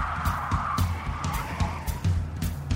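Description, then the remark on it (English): A 1931 Buick convertible roars along at speed with tires squealing in a sustained skid, engine rumbling underneath and repeated sharp bursts of road noise, loud, with no one talking, driven from downtown Los Angeles to Hollywood. “Lucy approached driving like she did everything else, with gusto and no brakes”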